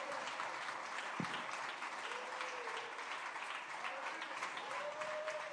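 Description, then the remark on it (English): A crowd claps steadily and densely for several seconds, a sustained wash of many hands applauding, with faint voices and a brief low thump partway through. “Clap your hands and thank God for what did not happen.”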